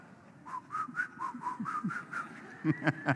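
A person whistles a short, bouncy tune, a string of evenly spaced notes rising and falling, slightly breathy, with faint low rumble beneath and a few sharper accented notes at the end.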